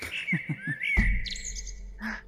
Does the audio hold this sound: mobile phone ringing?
no